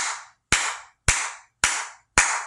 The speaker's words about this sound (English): Okay, so let's do this together. Just start clapping.